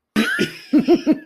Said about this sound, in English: That was a cough in my throat.